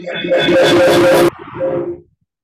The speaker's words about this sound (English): There was some kind of distortion in the sound. I didn't hear you.